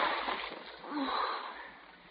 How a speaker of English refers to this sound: See what you've done? You dropped it in the water. It's all your fault.